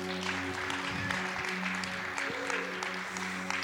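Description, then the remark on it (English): An audience applauds steadily, a dense wash of many hands clapping at once, with a sustained low hum running underneath the whole time. “You can clap for them.”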